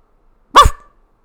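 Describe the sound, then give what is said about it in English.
A single short, loud bark, made by a person imitating a dog, sharp, with silence before and after. “Oh, can you bark for me?”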